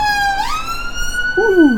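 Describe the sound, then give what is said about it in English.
An emergency vehicle siren wails past outside a window in South Central, its tone sweeping and dipping in pitch as it moves by, fairly loud but muffled as heard from indoors through the window, with steady background noise. “We're in South Central here, and we have sirens go past the window.”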